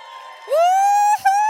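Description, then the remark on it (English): A loud, celebratory whoop from a single voice, celebrating an engagement announcement: it slides up in pitch, holds a bright sustained note, breaks off briefly, then picks up again. No crowd is clearly audible beneath it. “Thought we should celebrate because they've been away. So they needed the clap and the love from us.”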